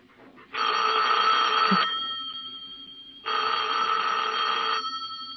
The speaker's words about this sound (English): You better answer the phone.